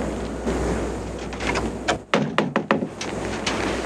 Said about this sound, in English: Ooh, what's in that box you just opened, you asked? Why, it's a Stinger.